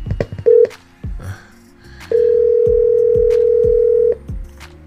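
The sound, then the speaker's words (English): A phone line connecting to bring a guest on the line for the Money Marv Report show: a short steady tone blip, then a long sustained dial tone lasting about two seconds, over a repeating low thumping beat with no one talking. “Hold on, we gonna get him on the line.”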